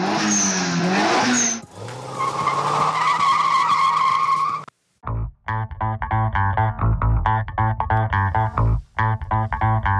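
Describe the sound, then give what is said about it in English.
A racing motorcycle's tires screech and skid loudly for several seconds, then the engine roars in hard, choppy revving bursts with brief gaps between throttle pulls. “Dill Slickle, the new pickle-based lubricant from Klobman's Pickles will leave your motorcycle feeling as good as me. Listen.”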